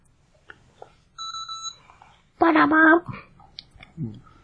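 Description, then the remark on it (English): A brief, steady electronic alarm beep sounds once, clear, followed by a person speaking loudly and some quieter talking and clicks. “We got an alarm.”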